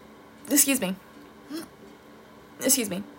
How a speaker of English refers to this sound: Excuse me. I had to clear my throat.